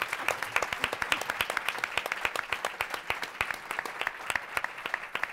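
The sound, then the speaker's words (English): A crowd applauds steadily for about five seconds, many hands clapping in a dense, even patter with sharp individual claps standing out, holding at a fairly strong level throughout. “And everybody give him a round of applause.”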